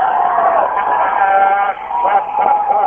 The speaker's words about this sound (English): And people are standing and cheering and clapping. I just don't get this. People in suits are even standing and clapping. They're tipping it over. They're tipping over one of the police cars. And they're cheering. Listen to the crowd.